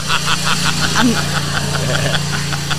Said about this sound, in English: Let me say that again when the lawnmower is not driving by.